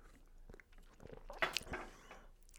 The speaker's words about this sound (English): As I'm sipping tea